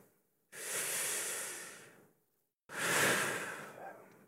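Two long, deep breaths, a slow airy inhale followed after a short pause by an equally long, breathy exhale, with no talking.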